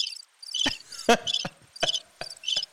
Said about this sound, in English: Crickets. Crickets.